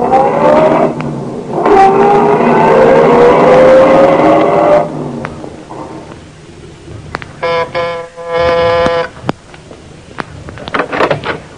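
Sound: car driving away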